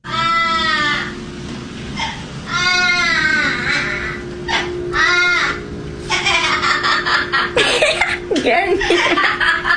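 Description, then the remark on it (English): A parrot wails in drawn-out, baby-like cries, three rising and falling calls, then breaks into a raspy, cackling laugh of quick choppy bursts, loud. “So a parrot is mimicking a baby in the video, and then all of a sudden has this evil laugh to it.”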